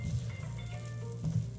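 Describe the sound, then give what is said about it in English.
Butter substitute sizzles steadily in a hot pan, a continuous crackling hiss with a low hum underneath, fairly quiet, with no one talking. “Got a nice little sizzle. Got a sizzle going on, so it's hotter than my hand thought it was.”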